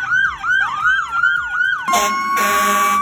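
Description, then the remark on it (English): A loud emergency siren from fire department vehicles in a parade driving through a neighborhood whoops up and down in quick repeated sweeps, then switches abruptly to a steady, blaring horn-like tone. No one speaks. “There's not a police car coming up behind you. Don't get scared, I always do.”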